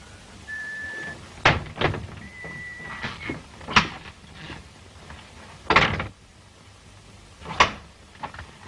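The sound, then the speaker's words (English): A door opens with a faint creaky squeal and is shut again, with a handful of sharp clunks and latch knocks spaced a second or two apart, and no one speaking. “Lock the door.”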